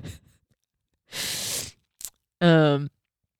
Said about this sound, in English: Gosh, sorry, I got to blow my nose. It's like, ugh.